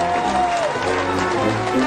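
A round of applause for a band whose song took the number one spot on a top 10 countdown: many hands clapping in a dense, steady, loud wash of noise, with a faint tone sliding downward partway through.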